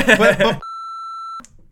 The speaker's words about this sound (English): You have to beep that out. Time hack. Yeah. Beep out that guy's name.